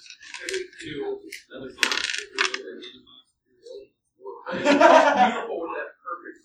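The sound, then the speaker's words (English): Dice clatter and rattle in a few short bursts as they're scooped up for a game (three yellow, two green, a red and a couple of purple dice), fairly loud, with brief pauses and soft chuckling between the handfuls. “I'm gonna need. Three yellow dice, two green dice, about roughly.”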